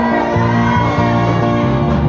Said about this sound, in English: If you believe, shout amen.